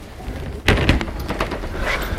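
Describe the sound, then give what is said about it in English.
A church side door, used to enter the main body of the church, swings shut with a heavy, dull thud, followed by a few lighter knocks and rattles of the latch, then one last sharp click. No one speaks. “We've entered via a side door.”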